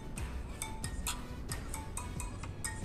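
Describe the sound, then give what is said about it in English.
A phone ringtone plays a quick, rhythmic run of bright chiming notes repeating about twice a second, fairly quiet, over a low background rumble with no one talking. “So look, this is how my ringtone sound, y'all.”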